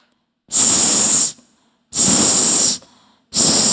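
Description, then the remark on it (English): A voice imitates a snake's hiss, producing three loud, sharp "sss" bursts, each under a second long with short pauses between them. No one speaks. “I want you to imagine a snake that is skinny and green. Snake starts with the letter S.”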